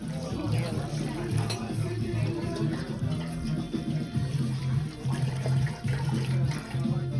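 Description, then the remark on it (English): Rose water is poured and splashes over hands in a steady, continuous rinse lasting several seconds, a traditional Moroccan hand rinse before dinner, with faint voices murmuring underneath. “when they come in for the dinner portion of it, how we wash everybody's hands with rose water.”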